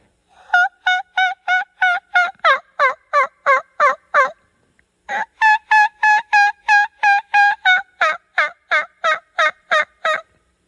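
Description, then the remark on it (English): A turkey hen gives a kiki run call: two long bursts of rapid, evenly spaced, nasal calls separated by a short pause, loud, with no one talking. “But I've heard them hens do that kiki run in the spring.”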